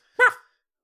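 A single short, sharp dog bark, loud, rising and falling quickly, with silence before and after.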